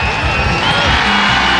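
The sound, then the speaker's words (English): A loud, dense wall of crowd cheering and whooping fills the whole moment, a steady roar of many voices with no single speaker standing out, like a canned cheering effect. “The cheering! It's like the worst effect.”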